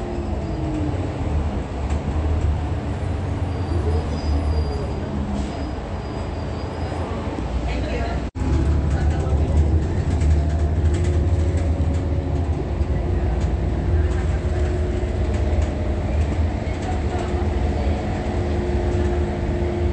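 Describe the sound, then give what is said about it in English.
Steady, loud low-pitched engine drone and road rumble from inside moving city bus number 1364, with rattles and faint muffled voices, continuing throughout apart from a brief break partway. “The fake sign is directly over my head on this bus number 1364, which I just took an image of.”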